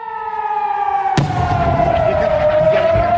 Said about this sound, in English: The sirens sounded again in Ashkelon as we sat and talked. We and the team had to run to take cover from another huge barrage of rockets.